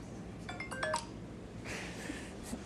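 The speaker's own phone rings with a quick cluster of bright electronic chime tones, fairly soft, followed by a quieter hiss and background noise with no talking.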